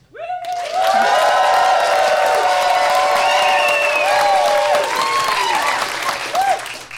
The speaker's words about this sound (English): By applause, who should win International Waters live from MaxFunCon?